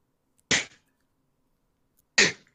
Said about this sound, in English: Are you sneezing? Yeah. That's okay, you're not near me.